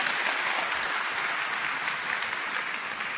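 Steady applause from an audience, a dense wash of many hands clapping at once, fairly loud and sustained without any voices standing out.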